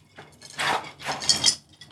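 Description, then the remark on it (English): Glasses of whiskey clink together in a toast, a couple of bright chimes with a short ringing tone following the second contact. “Cheers. Hey, cheers.”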